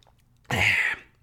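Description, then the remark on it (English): A single short slurping sip of water, a breathy, hissing burst lasting under half a second, with quiet stillness before and after and no talking. “Sip of water, folks.”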